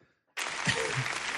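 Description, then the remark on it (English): Audience applause bursts in abruptly after a brief silence, then holds as a steady, dense wash of many hands clapping at an even, fairly loud level, with no one speaking. “Thank you for those claps”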